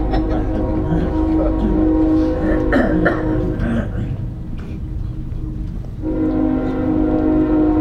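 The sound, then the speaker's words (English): A train horn blows in the distance in two long, sustained blasts separated by a brief lull, its steady chord carrying clearly over a low rumble. “How many of you have the joy of hearing the train from your house?”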